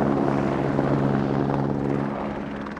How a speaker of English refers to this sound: is that a helicopter outside the apartment?